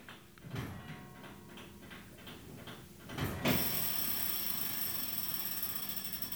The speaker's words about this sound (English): As regular as clockwork, in fact. If you can hear that, that's the clock mechanism on the bong. I'm going to turn it up.